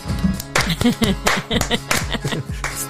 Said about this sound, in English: Where's our clapping sound effect?